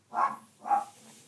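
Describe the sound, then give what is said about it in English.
A dog gives two quick barks about half a second apart, moderately loud, with no talking over them. “What does your dog think?”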